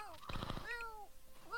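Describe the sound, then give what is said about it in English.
A voice imitates a cat, giving two drawn-out, arching meows, with a brief noisy burst just before the first one. “Meow. Meow.”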